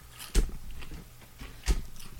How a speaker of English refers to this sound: I gotta chew this chip real quick. Real quick.